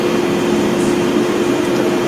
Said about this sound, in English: But, …'s got like a vacuum rolling over there, a fan on 25 speed.